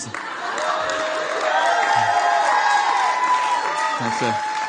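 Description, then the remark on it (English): An audience applauds steadily for about five seconds, a dense wash of clapping mixed with murmuring voices and a few scattered cheers and whoops rising above it. “This point I was going to make is the book's much better than your applause.”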